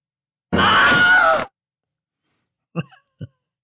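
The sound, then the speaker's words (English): A person lets out a loud, one-second imitation scream, strained and raspy, followed by a pause and two short breathy vocal bursts. “Not the best scream for that”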